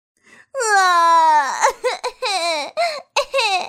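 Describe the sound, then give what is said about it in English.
A voice imitates loud crying: one long, wavering wail that slides down in pitch, followed by a string of short, choppy sobbing bursts with brief gaps between them. “The mouse heard the crying and walked over.”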